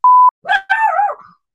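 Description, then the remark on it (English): A short electronic beep, then Jasper the dog lets out a high, wavering whimper that slides downward and trails off after about a second. No one speaks. “Jasper's obviously not a fan. Such a scream.”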